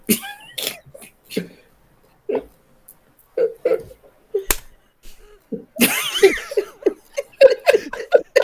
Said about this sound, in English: slapped him upside the back of the head. Y'all heard it over the comm. Just a glove hand just smacking the bald silver head.